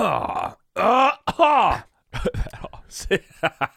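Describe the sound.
A man who is phlegmy and catching a cold noisily clears his throat and hacks up phlegm in several harsh, groaning bursts, followed by brief muffled speech-like sounds.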